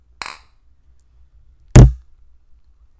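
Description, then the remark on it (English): Two glasses of cloudy, ale-like beer clink together once in a toast, a bright ringing tap that fades quickly, followed a moment later by a louder, duller knock, like a glass set down hard. “All right, let's clink these and let's drink these.”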